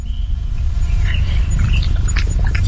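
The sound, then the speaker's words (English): A cat named Ludwig purrs steadily, a deep, continuous rumbling vibration that stays loud throughout, with a few faint, brief higher-pitched rustles over it. “Oh, he's purring.”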